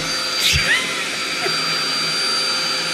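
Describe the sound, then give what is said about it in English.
A man imitates a vacuum cleaner with his voice, producing a steady, loud, breathy whooshing drone with a faint high whine. It holds for the whole three seconds after a brief rougher burst near the start. “A vacuum.”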